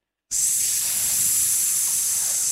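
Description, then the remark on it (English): A voice imitates the sizzle of salsa being poured into a frying pan with cooked meat: a sudden, steady, bright hiss that starts after a brief silence and holds evenly for about two seconds. “When you pour the salsa into the pan when it's frying, I love that sound.”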